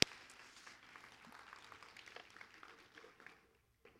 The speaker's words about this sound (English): So thank you so much. Let's give them one more round of applause this morning. Thank you all.